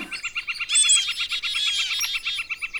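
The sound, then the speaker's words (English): Several birds chirp and sing at once in a busy, overlapping chorus of rapid high tweets and trills, steady throughout, with no voices. “And to this day, I go down in that area now, and all the birds and squirrels and stuff all start chirping and singing and laughing and saying, oh, there's that great bear kisser.”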